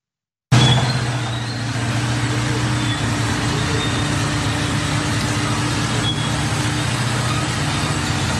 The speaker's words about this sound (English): Now, we have a video of an Israeli bulldozer destroying a street, which was preventing ambulances from getting injured people in the city.